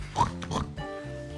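A quick run of three snorting pig oinks, loud and close, followed by a steady humming tone that lingers after the grunts stop.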